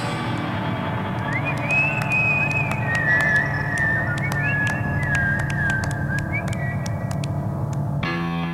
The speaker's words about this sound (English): The very beginning of the track has extra whistling, clapping in mono, and this is missing in stereo. Let's hear this, first in mono, and then again in stereo.